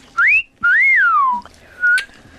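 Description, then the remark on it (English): A clear wolf whistle: a quick rising note, then a longer swoop that climbs and glides down, followed by a brief extra whistled tone. No one speaks. “I don't think anyone does that whistle anymore, do they? I do.”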